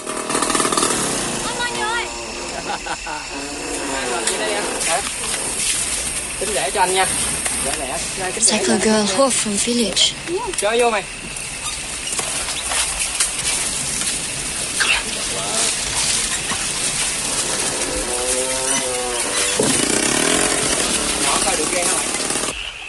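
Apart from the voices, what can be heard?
scooter engine running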